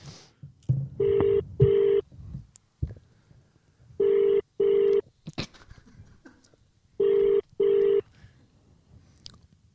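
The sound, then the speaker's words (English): An outgoing phone call from a private number rings three times without being answered, each ring a double burst of tone repeating every few seconds, heard through a phone speaker over faint background noise. “Who doesn't answer private unknown numbers?”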